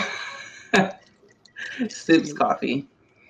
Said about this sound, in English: Sips coffee. With my buzz caffeine.